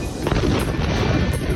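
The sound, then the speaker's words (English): A very loud explosion in the city of Beirut: a deep booming blast with heavy low rumble and a crackling, noisy roar that stays strong for the whole moment, with no voices. “Suddenly we heard a very loud explosion.”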